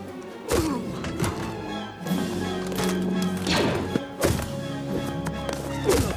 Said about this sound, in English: Battle between Cody, Rex, and Slick. Slick heading for the door, trying to make a getaway. Cody tackles him to the ground.